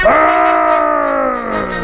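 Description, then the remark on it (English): A person imitates a howling dog: one long, loud, sustained howl that swoops up at the start, holds a steady pitch, then sags slightly toward the end. “I sound like a dog all the time when I rap, when I scrap, when I'm in the backyard and I'm giving all my boys dap.”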